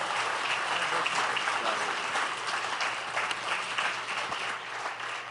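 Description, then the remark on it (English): A crowd applauds steadily for several seconds, a dense wash of many hands clapping at an even, moderately loud level with no pauses and no speech. “Would you give Brother Gonzalez a big hand?”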